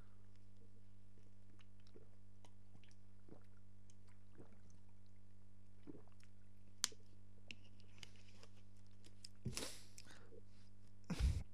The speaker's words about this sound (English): I'm making lots of poppy noises. I'm going to finish my water and then we can move on.